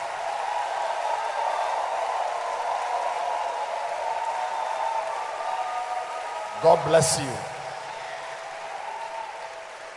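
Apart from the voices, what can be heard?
audience clapping hands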